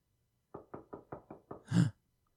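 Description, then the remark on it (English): Several sharp knocks on a door in a quick, even rhythm, ending with one louder, heavier thump. The knocking is clear, with no voices. “Someone's at the door.”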